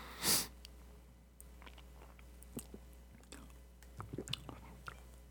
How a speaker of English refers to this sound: I gotta do another sip here. Because it's not what I was expecting at all.